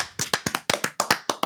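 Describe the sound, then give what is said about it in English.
Hands clapping out the end of a show in a quick, slightly uneven burst of about a dozen sharp, crisp claps, fairly loud and bright, with no voices over them. “So guys, let's clap it out.”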